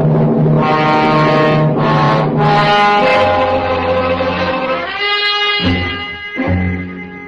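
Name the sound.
police squad cars arriving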